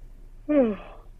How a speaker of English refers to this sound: Sorry, I yawned on the pod.